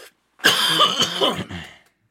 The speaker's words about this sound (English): Regular, yeah, despite the fact that I'm coughing, I'll give it a I'm gonna give it a regular.